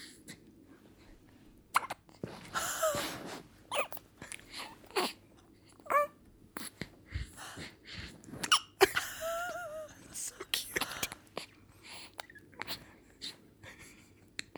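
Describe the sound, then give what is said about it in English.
A baby girl's small, repeated hiccups come in short, sharp bursts at irregular intervals, mixed with soft squeaks, breaths and little gurgling sounds over a quiet background. “But this is one of the cutest things that I just can't get over, and that is when she has her little her little hiccups.”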